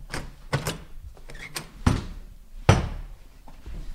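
Clicks and rattles of a lock being worked on a door in a hallway behind a sanctuary, followed by a couple of heavier knocks and thuds as the door to a dark stairwell leading to a brick cellar is pulled open, with no talking.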